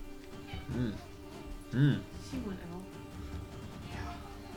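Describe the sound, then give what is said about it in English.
A cat meows about three times in short, drawn-out calls spaced roughly a second apart, the middle one loudest, over a faint steady background hum. “For letting the cat out.”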